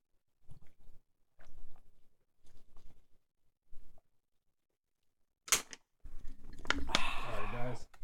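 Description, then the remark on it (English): Brief talking, then a sharp crack like a can opening, followed by a couple of seconds of loud gulping and slurping as people chug their drinks. “Let's chug this shit. We're going to slurp these down, and then...”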